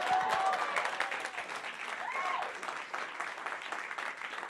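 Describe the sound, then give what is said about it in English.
A light golf clap from three people: soft, steady patter of hands that carries on without pause, with no one speaking over it. “Oh, three of you, golf clap.”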